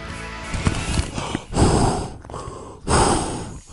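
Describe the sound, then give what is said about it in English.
Heavy breathing into a paper bag with a hollow, muffled rasp: a few quick puffs followed by two long, loud exhales about a second apart, with no one speaking. “I'm breathing into a bag because I'm feeling dizzy after this week.”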